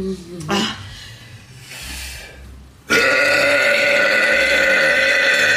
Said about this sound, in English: Okay, so she backs up the tits a bit. And then burps in her face again.